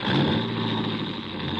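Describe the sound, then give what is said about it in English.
A coupe's engine roars, a loud, steady rumble with a rising mechanical whine, as the stolen car revs and is driven away. No voices are heard. “Adrian had actually stolen my car and was gone”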